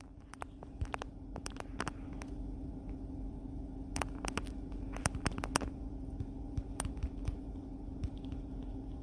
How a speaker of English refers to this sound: Oh, listen, I'm typing stuff, y'all.